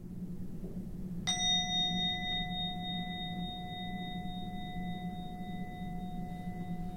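A single bell is struck once, ringing out with a bright, clear tone and several steady overtones that sustain and slowly fade over several seconds above a low background hum.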